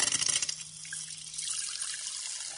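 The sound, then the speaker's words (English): Red cabbage solution poured into a glass of carbonated water, with a brief burst of splashing and spluttering at the start settling into a steady hiss of bubbles, with no talking. “Well, it obviously spluttered a bit to begin with, but the colour difference is really obvious.”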